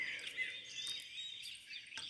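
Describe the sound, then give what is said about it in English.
Birds chirp and trill outdoors in a steady, high-pitched chorus, with thin whistled notes over a soft ambient hiss and no voices. “Hang out in nature. Hang out with the birds.”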